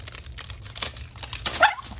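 A dog lets out a short, sharp yelp near the end after being hit, amid bursts of rustling and crinkling noise and a low background hum.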